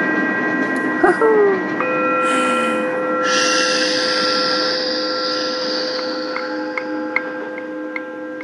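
A train rolls steadily along the rails with a continuous droning rumble and whine, a brief metallic squeal early on, and faint rhythmic clicks from the track toward the end.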